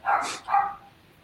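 A neighbor's dog barks twice in quick succession, two sharp, fairly loud woofs with a short gap between them, then silence. No one speaks.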